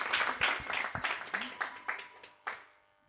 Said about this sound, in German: Ein Mini-Applaus, großer Applaus